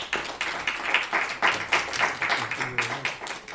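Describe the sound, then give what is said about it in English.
A crowd applauds John Merrow as he begins a conversation about his new book, Addicted to Reform, a steady wash of many overlapping claps at fairly even loudness throughout, with a faint voice murmuring underneath near the end. “I want those out there who are new to listen to John Merrow and those that are old to give Mr. John Merrow a round of applause as he has a conversation of his new book, Addicted to Reform, a 12-step program in education.”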